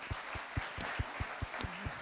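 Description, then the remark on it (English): A crowd claps for partner groups including the University of Denver, the Office of Economic Development, the Small Business Development Council, Startup Colorado and Roaring Fork Leadership, a steady patter of overlapping hand claps, moderately loud, with no voices over it. “So a big round of applause for those groups.”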